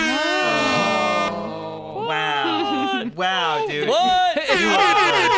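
A hip hop air horn effect blares in a series of loud, brassy blasts with wavering pitch, running continuously for several seconds with only brief dips between bursts.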